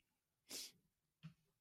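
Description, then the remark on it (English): A single sharp, breathy sneeze bursts out, followed a moment later by a short, softer sniff or snort, with otherwise quiet surroundings. “I can't see myself sneezing.”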